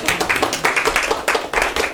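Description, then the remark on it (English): Steady applause from a crowd, dense overlapping claps forming a continuous bright patter that stays fairly loud throughout with slight surges. “Big round of applause for...”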